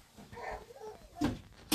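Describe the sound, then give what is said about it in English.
A door being moved indoors: a faint creaking sweep followed by two short, fairly loud knocks or clunks about half a second apart, with no one speaking. “This door has to stay open, honey.”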